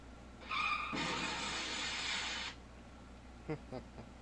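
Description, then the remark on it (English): A short tire screech gives way to a loud, sustained crunching crash lasting about a second and a half, followed by a few faint clattering thuds as it settles. “Car crash. He hasn't done it yet, though. I had to car crash.”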